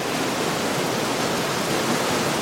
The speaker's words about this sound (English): Our trek has taken us to the Urubamba River